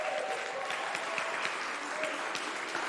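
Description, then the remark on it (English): A crowd claps steadily in a round of applause for the book Fierce Love, a dense wash of many hands striking at once, with individual claps popping out of the sustained, even roar for the full few seconds. “Can we give a round of applause for the book, Fierce Love?”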